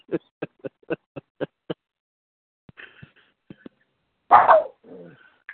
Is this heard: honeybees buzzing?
no